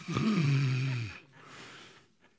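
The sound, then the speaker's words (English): A voice imitates a loud, drawn-out snore lasting about a second, followed by a softer breathy exhale trailing off into quiet. “And here's Peter snoring next to them in chains.”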